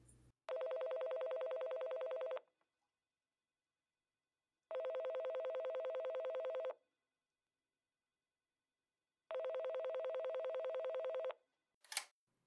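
A man places a telephone call: the phone rings three times, each a buzzing ring about two seconds long separated by even silent pauses, followed by a short click as the line picks up. No one speaks.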